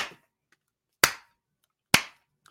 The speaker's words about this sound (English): But this? Oh, not the slow clap.